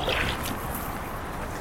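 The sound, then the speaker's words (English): Water sloshes and splashes steadily as a paddle dips and pulls through the water beside a heavily laden canoe, with no voices over it. “It's all right, I'm letting you do a bit of padding just to see how you get on.”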